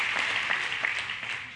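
A crowd claps together in a dense, steady patter of overlapping hand claps, fairly loud and sustained throughout, with no voices standing out above the applause.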